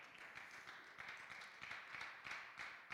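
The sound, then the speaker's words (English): An audience claps their hands together in a steady, dense wash of overlapping claps, with faint swells in intensity roughly every half second and no voices heard. “If you're a part of that kingdom, why don't you clap your hands where you are right now?”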